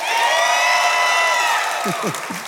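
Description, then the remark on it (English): A large audience at Life Church cheers and applauds loudly, a sustained wash of whoops and raised voices over clapping that fades slightly toward the end, with a few lower voices breaking through; welcoming Pastor Chris Hodges and clapping for Jesus. “Come on, give Jesus a better hand clap, everybody.”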